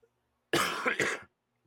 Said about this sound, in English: Sorry, hold on, I got a cough.